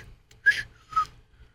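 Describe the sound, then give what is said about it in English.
A person tries to do a crazy whistle sound, producing two short, breathy bursts, each with a thin pitched tone buried in airy hiss, separated by a brief pause. Moderately loud, with no talking. “I'm trying to do the crazy whistle sound.”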